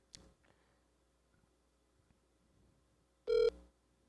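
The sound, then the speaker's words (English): A phone line rings out on an outgoing call: quiet, faintly humming line noise, then one short, loud, buzzy ring tone near the end. No one speaks. “I hope they have a voicemail.”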